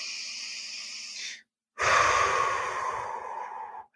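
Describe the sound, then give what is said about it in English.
A slow, deep breath: a long airy inhale, a brief pause, then a louder, fuller exhale that gradually fades out. No one speaks. “Breathing into that.”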